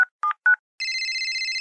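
A telephone number being dialed to call a witness with more questions: three quick, clipped keypad beeps in a fast run, then a steady, slightly warbling high tone that holds to the end. No one speaks.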